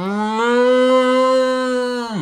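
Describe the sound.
A person imitates a cow moose call at a moose rutting pit, made by plugging the nose and using the hands: one long, loud, nasal moan held steady for about two seconds before dropping off at the end.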